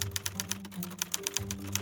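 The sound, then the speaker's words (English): Rapid, steady clacking of typewriter keys as a screenwriter works on the script of Roman Holiday, a quick string of crisp strikes, with a low sustained tone humming faintly underneath. “He was working 13 to 14 hours a day, taking sedatives to fall asleep after frantic days in front of his typewriter, and then taking uppers to get himself going again in the morning.”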